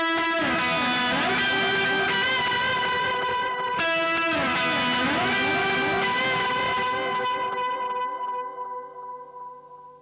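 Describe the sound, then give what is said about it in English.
Sustained electric guitar played through a Morning Glory overdrive, a Time Factor delay and a harmonizer, smeared by delay repeats and a shimmering pitch-shifted harmony layer, forming a dense, washy wall of chords that gradually thins and fades near the end; no talking. “And then Morning Glory, Time Factor, and the harmonizer sound like this.”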